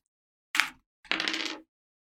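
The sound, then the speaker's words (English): Dice are rolled for a game move ('roll plus steam') and clatter across a table in two quick bursts: a brief rattle, a short pause, then a longer tumbling roll that settles and stops on a total of 8. No one speaks. “Yeah, time to run. Roll plus steam.”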